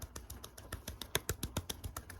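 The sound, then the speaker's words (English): A quick run of about a dozen sharp finger snaps, crisp and bright, coming in a fairly steady rhythm with no one talking over them. “Good, it's snapping again.”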